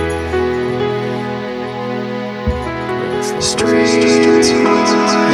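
A short, upbeat theme jingle for a segment reviewing streaming shows plays on its own, loud, with sustained melodic tones and punchy percussive hits that build into a fuller, brighter finish.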